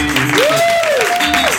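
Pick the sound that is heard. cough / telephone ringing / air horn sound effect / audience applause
audience applause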